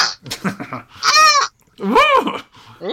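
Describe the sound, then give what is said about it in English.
A sheep bleats loudly, a few wavering, nasal calls in quick succession with short pauses between them. “Get him, sheep!”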